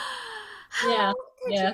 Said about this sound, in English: And I gasped out loud.